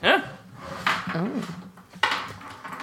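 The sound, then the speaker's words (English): A small pet named Weasel lets out a few short, high-pitched squeaks in quick succession, fairly loud, with rising and falling chirpy tones and no talking. “Weasel is squeaking.”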